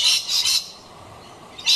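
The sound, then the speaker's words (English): Harsh, raspy Australian bird squawks in a few bursts, a quick pair at the start and another after a pause, loud with a scratchy high-pitched rasp and nobody speaking; birds calling in the morning. “Waking up every morning to birds chirping and waking you up.”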